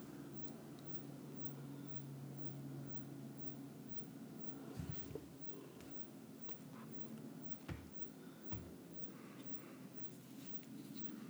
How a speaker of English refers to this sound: There's also a plane overhead that seems to be pretty loud right now. I'm sure you can hear that, but, you know, it's whatevs.